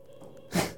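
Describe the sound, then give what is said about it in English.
A single short, squeaky screech from a heater fan, a shrill wavering whine lasting about a third of a second that rises out of a low background hum. “That's the heater fan. Squeaky heater fan, in Jesus' name, we cast you out.”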